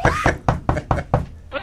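Several firm knocks on a door in a quick, fairly even rhythm, loud, with a bit of resonance behind each rap.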